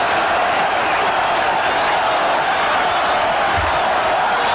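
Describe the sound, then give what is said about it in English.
A loud baseball stadium crowd roars steadily throughout, a dense wall of cheering and shouting with no pauses, heard from within the stands, as Nolan Ryan pitches to Roberto Alomar. “I mean, the crowd is so loud, dude.”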